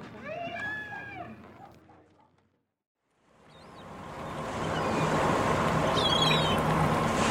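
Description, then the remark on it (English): A slow cargo boat churns along a river, its steady, washing rumble swelling in after a short silence and holding loud. A voice-like sound comes first, and faint chirps appear near the end. “is there any particular reason why this boat is traveling so slowly?”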